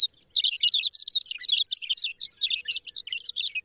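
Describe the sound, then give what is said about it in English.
A thick-billed longspur sings a long, rapid, burbling warble of jumbled high tweets and trills, continuous, with no other sounds around it, in the short grass prairie of eastern Montana. “The bird's long, burbling song helps create the summer soundscape of the high plains.”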